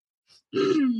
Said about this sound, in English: One second, I'm about to cough.